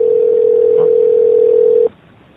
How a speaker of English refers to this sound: Making a phone call. Calling your mother.